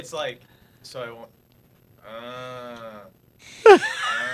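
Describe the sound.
A voice imitates a person's snoring that sounds like a cow: a few short, throaty snorts, then a long droning moo-like groan, ending in a sudden louder rasping snort, alone.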